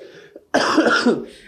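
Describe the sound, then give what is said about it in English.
A single loud, rough cough, lingering from an illness, bursts out after a brief quiet moment, with a raspy, throaty texture that trails off quickly. “You see, that's only the only thing left about that sickness is that cough.”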